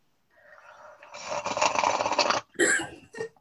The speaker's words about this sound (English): Yeah. I guess we have to do a loud slurp now. We have a cup of tea.